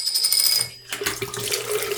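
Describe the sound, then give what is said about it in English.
A high metallic clink rings out, then after a brief pause film developer splashes and trickles steadily as it's poured out, a continuous watery sound with no talking. “Okay, let's pour out.”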